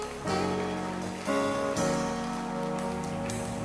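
audience clapping hands

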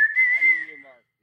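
someone whistling

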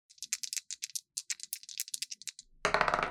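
dice being rolled

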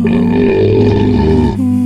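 belch

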